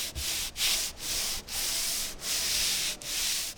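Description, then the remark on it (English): A furniture finisher hand-sands one of the nearly 100-year-old wooden delegate desks of the House chamber: steady back-and-forth rasp of sandpaper, fairly loud, in long strokes with brief pauses between them, about six passes with no talking. “Furniture finisher Brian Richards is hand-sanding all 100 of the near 100-year-old delegate desks.”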